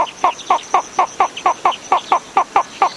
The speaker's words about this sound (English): Now listen to the slender-billed flufftail.